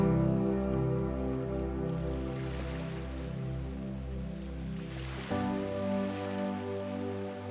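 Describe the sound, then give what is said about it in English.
Gentle surf washes in and recedes on a beach shore beneath a sustained, droning musical backdrop, with one fuller swell of breaking water midway through. No one speaks. “And every time you hear the waves breaking on the shore, you are becoming more and more relaxed each and every time.”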